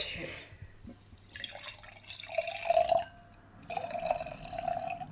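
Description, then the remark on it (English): Wine poured into a glass, in two short gurgling pours with a brief pause between, the pitch of the splashing liquid shifting as the glass fills. “I'm going to pour some too.”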